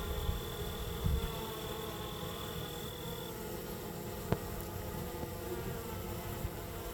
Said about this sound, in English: Yes, the bees sound really calm.